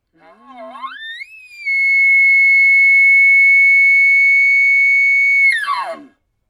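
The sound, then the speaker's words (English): A bugle call blown on a reed call tube to hit the ringing frequency: a low note sweeps steeply upward into a loud, piercing whistle held steady for about four seconds, then breaks off into a raspy, falling chirp. “You just got to hit the frequency that makes your ears ring.”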